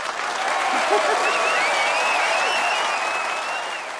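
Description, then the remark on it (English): An applause sound effect played as a drop after a bad joke: steady, dense applause from a crowd fills the whole stretch, loud and even, with a few whistles and faint cheers riding over the clapping before it tapers slightly at the end. “you were applauding us on our”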